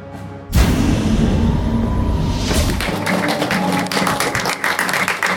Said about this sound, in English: You just watched Voyager and you still have enough applause left in you? That is fantastic. Yes, applaud us.